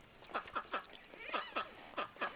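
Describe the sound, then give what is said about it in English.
A run of loud, raspy duck quacks from the YouTube show Skeeter the Duck, about seven or eight calls in quick succession with short gaps between them, with no one talking. “Ducks quacking loudly.”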